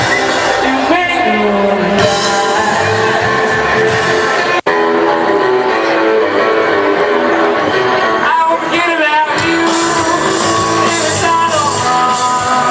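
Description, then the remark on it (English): A festival concert crowd cheers loudly and steadily, with scattered whoops and shouts rising through the din, while amplified indie rock music plays alongside for the whole stretch. “And the crowd sure liked it too.”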